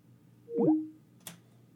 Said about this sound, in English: All right, we lost …. Skype went out.